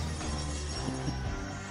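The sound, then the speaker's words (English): A loud, dense burst of a glass screen shattering fills the moment, sustained and noisy rather than a single crack, with a low tonal hum running underneath and no voices. “Well, the screen shattered when that noise happened.”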